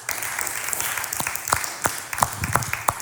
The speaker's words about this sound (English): Hey, can we just give a round of applause to the band, please?